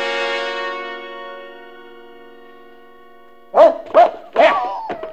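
A sustained musical chord slowly fades away, then Jeff the dog barks three or four times in quick succession, sharp, with a slight echo, as he runs off, in the radio drama Ghost Hunt.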